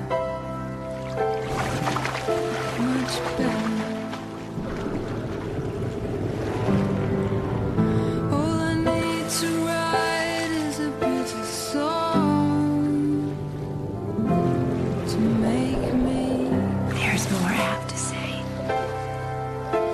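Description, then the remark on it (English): Water splashes and sloshes steadily throughout, blended under a loud, sustained song with a singing voice and layered instruments, the splashing forming a constant wash beneath the music. “I mean, let's just hear it with the splashing to to really drive it home.”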